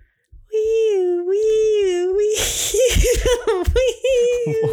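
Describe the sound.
A voice imitates police sirens as a joke about the "National Anthem Police", with a long, steady wailing tone that rises and falls gently, then breaks into noisy laughter and short choppy vocal sounds before the wail briefly returns.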